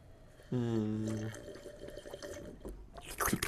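A loud, wet slurp of coffee from a mug: a short, steady, whistling suck of air and liquid, then a bubbly, gurgling tail and a few small splashy sounds.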